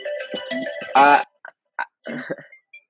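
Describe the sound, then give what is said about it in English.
A mobile phone ringtone plays a bright electronic melody: a run of tonal notes swelling into one loud sustained tone, then a few short chirps trailing off, fairly loud, with no talking. “Forgot to put my phone on silent.”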